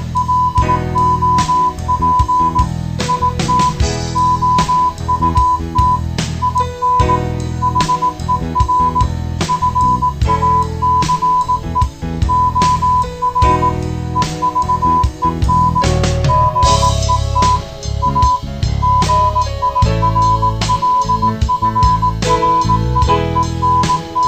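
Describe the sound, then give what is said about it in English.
A steady high-pitched tone keys on and off in short dots and longer dashes like Morse code, running continuously over a loud, busy music track with heavy bass. “Is he too busy with his Morse code to be getting any?”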